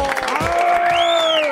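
Steady crowd applause fills the whole moment, a dense wash of clapping mixed with cheering and a few rising, whistle-like tones over the top.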